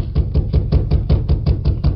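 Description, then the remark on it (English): Rapid, steady knocking on the wooden door of a house: about ten firm raps in two seconds, loud, with no voices. “Me rap on the door.”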